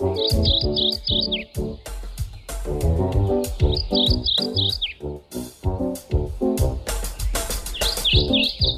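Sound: mourning warbler song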